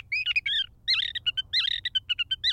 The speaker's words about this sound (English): As for the sage thrasher, he's still going strong.